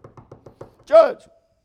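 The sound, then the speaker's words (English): A quick series of five even knocks, like rapping on a door, followed by a short, louder vocal exclamation. The knocking may be imitated by a voice rather than made on a real door. “Going home, there she is, he's knocking on the door.”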